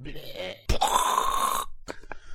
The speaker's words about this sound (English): It was me making blowing nose sounds. You made tissue sounds.